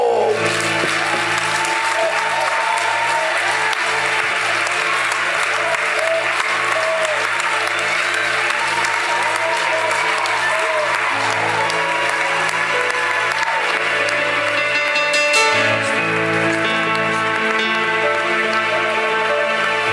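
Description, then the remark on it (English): An audience, hands lifted above their heads, claps steadily and loudly as a 60-second clap offering, a dense, continuous roar of applause with sustained music tones playing underneath. “And then you're going to give him a clap offering for just 60 seconds.”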